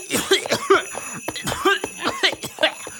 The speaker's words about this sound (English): He hears their elaborate strings of verbal abuse addressed to him until one of them is overpowered by a coughing fit.